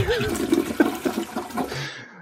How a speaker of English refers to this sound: Can we get a toilet flush? Hey, come on. Can we get a toilet flush?